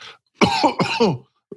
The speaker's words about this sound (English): Sorry, got a bit of a cough.